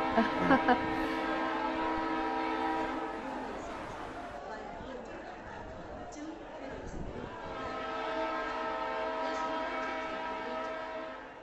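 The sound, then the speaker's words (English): A passenger train pulls into Vishakhapatnam station, where it halts for 15 minutes, sounding two long, loud tonal horn or brake-squeal blasts separated by a few seconds of rumbling, clattering train noise with faint background chatter. “Ma'am, this is Vishakhapatnam. The train will halt here for 15 minutes.”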